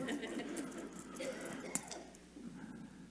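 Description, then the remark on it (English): Keys jingle faintly in a hand, a scatter of light metallic clicks and taps with one sharper clink midway, under soft background murmur. “Because they want you to see that they have keys in their hand, and they want you to ask about it.”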